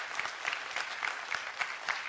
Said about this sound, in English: It's an awesome, yeah, you guys can clap for that. It's an amazing thing.